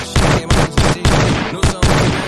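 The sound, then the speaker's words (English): A rapid volley of loud gunshot sound effects, about six sharp blasts fired in quick succession with brief gaps between them and no voices. “Do gunshot?”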